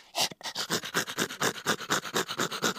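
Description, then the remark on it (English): A dog pants loudly and rapidly on set, a steady stream of quick, breathy huffs in an even rhythm with no pauses, and no voices. “That fucking dog though, Bridget, we love that dog. This is what you hear when every time that dog's on set.”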